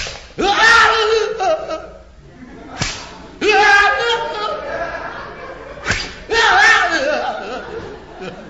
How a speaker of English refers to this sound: what do you want on your back? Nothing. Whip away. Okay, tough guy, you asked for it. That's one. And that's two. And that's three.